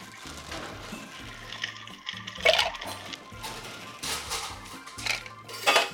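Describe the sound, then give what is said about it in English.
Ice cubes clatter into metal cocktail shaker tins in a few bright, rattling bursts, with a low steady hum beneath and no one speaking. “Put a little ice in your tins.”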